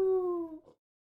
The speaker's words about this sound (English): Cows say good morning to their bovine buddies, and dingoes howl to each other in the night.